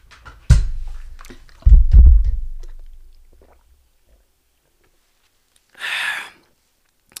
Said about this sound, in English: Okay. Hold on. Let me drink some of my water.